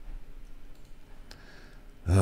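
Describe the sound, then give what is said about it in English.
A few quiet mouse clicks tick by against a low background hum as someone clicks through on-screen comments, one sharper click standing out near the middle, before a loud burst of sound abruptly cuts in at the end. “Are the comments are not updating as I'm clicking through those, huh?”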